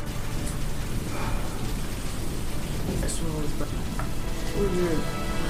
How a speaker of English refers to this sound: You can't see because of the heavy rain.